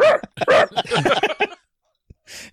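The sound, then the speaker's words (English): Someone mimics a barking dog, a rapid run of loud, yappy vocal barks for about a second and a half, then a pause, a faint click and a short breathy hiss. “They never put that dog under oath.”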